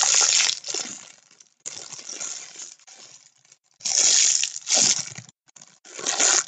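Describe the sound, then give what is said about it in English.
Loud handling of a plastic bubble-solution bottle in a person's room: bursts of crinkly rattling and sloshing in several irregular bouts, separated by brief quiet gaps, with no one talking. “Bubbles! We are recording in my room now. That's really loud.”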